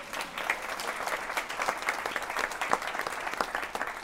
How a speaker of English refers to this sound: And next year, the NBA All-Star Game will be coming to Cleveland. Another cause for a round of applause, please.